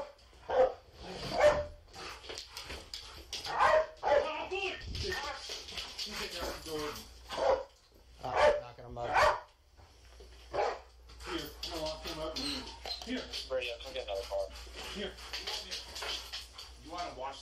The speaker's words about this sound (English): No. We're gonna send that dog in.